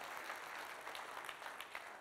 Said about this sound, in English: Come on. If you're going to clap, put yourself into it. Give it a good clap.